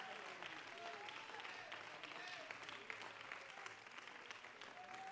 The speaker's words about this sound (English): Would you clap unto the Lord and give him praise with all your heart?